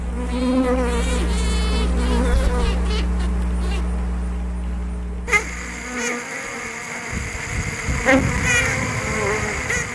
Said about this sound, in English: That high-pitched buzz is the sound of worker bees telling the queen it's time to fly to a new home.